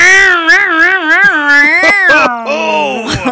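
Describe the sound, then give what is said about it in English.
A person vocally imitates the '69 mobile', a 69 hot rod muscle car, a loud, sustained buzzing tone that warbles and wobbles in pitch like revving, then glides down and swoops back up, for about three seconds. “It's a hot rod, that 69 mobile.”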